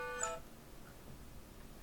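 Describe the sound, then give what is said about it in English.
A phone alarm set as a reminder to do reading gives a quick burst of bright electronic tones, several pitches stacked together, lasting only a moment before fading into a quiet, steady background hiss. No one speaks. “Right, so, oh, that's me alarm. That's for doing reading.”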